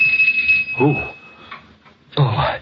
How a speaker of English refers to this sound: The doorbell. Oh, it couldn't be at this hour. It couldn't be, but it was.